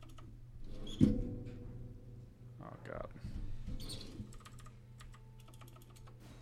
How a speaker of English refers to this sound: I hate that you have to use the keyboard.